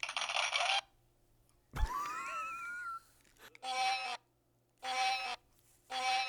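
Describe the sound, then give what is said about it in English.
A glitchy applause sound effect from a dying soundboard stutters out in short, harsh bursts that cut in and out, broken by a thump and a warbling electronic whine, with no voices. “By the way, I found the soundboard for the applause again. And, oh, yay. And apparently it's dying.”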